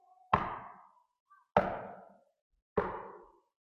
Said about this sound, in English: Trying to keep the house tidy and have dinner ready by the time Joseph comes back from his carpentry shop, when suddenly she hears a knock at the door.